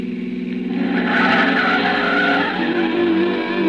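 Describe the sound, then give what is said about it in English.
The tires of an old pre-war car screech loudly and continuously as it turns right, a sustained squeal over the low rumble of its engine, with no one speaking. “It's an old car, pre-war. It sounded like it was splitting at the seams.”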